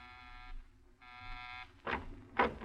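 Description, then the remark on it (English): An apartment door buzzer sounds twice, each harsh, droning buzz lasting about half a second, followed by two sharp, noisy clunks. “You pause for a moment before you buzz.”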